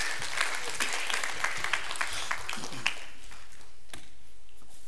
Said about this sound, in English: It's okay to clap.